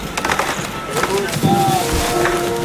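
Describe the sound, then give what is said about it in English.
A chainsaw cuts into one of the Tumors Oaks during their removal on April 23, 2013, its engine droning with a shifting, revving pitch over steady rough noise, with splintering cracks and faint voices of watching people in the background. “And then every time the chainsaw cuts on, just listen to the people get quiet.”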